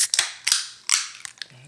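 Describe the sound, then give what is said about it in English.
A can of pale ale being cracked open: a quick series of sharp metallic clicks and pops, each followed by a bright, fizzy hiss, fairly loud with no talking. “And let's open her up.”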